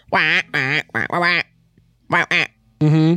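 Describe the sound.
A person's voice imitates a space duck, giving a series of loud, nasal quacks in short bursts: three, a pause, two more, then one drawn-out quack at the end.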